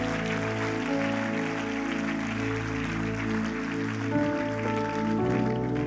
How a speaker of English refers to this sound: Come on, give the Lord Jesus a clap offering. Amen.